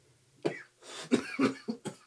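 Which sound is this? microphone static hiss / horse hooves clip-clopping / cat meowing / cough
cough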